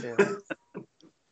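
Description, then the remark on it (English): A person imitates a northern pig in a northern accent, making a long nasal grunt followed by three shorter oinks that trail off quietly, with no other talking. “A northern pig.”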